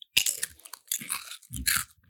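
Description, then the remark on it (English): Loud crunching of barbecue potato chips being chewed, three sharp brittle bursts in quick succession with no talking. “Yeah, we're over here crunching. Listen to this.”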